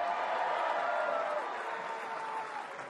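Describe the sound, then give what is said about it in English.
A tennis crowd in Delray Beach cheers and claps steadily for a player getting them into it, a dense wash of applause with excited voices mixed in, holding strong before easing slightly toward the end. “They're loving you, Mattia. I mean, I love that. He's getting the crowd into it in Delray Beach.”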